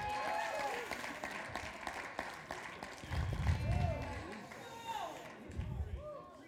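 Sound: audience hand clapping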